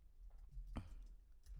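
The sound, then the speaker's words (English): A quiet computer keyboard click, one sharp tap followed by a couple of fainter ones, against a low background hum with no talking. “I'm typing in on the computer because my phone's taking forever.”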